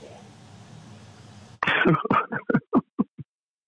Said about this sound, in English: Sorry, sneezing frenzy. Nobody needs to hear that. Yeah, no. It's probably the cats. At this point, it's the cats.